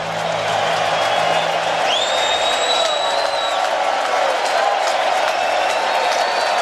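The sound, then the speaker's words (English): A baseball stadium crowd on its feet cheers in a steady, loud roar of many voices, with scattered whistles and shouts rising above the din throughout. “Crowd on its feet.”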